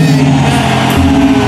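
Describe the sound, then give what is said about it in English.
An audience at a First Love London service shouts amen together at the end of a prayer, a loud, sustained wall of many voices blending into one long roar that holds steady for over a second. “And everyone shouted your loudest amen.”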